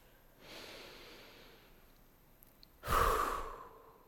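deep breath taken

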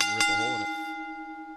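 bell ringing

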